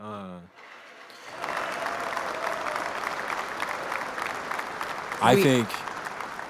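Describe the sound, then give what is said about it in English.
A crowd bursts into steady, dense applause after a brief voice, clapping loudly for several seconds, with a sharp whooping cheer rising over it near the end. “I don't even know what the clapping is.”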